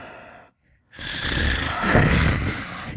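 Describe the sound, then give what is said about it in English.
A voice imitates heavy breathing right up against the microphone: a brief breath, a short pause, then a long, loud, rasping exhale with a noisy, snore-like roughness. “are you snoring? No, I'm just breathing. How I breathe.”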